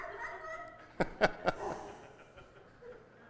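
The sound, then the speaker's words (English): A person imitates a dog, letting out three quick, sharp barks in rapid succession, fairly loud against faint murmuring. “One of you should stand up and bark back to me, and we'll call it an interpretation.”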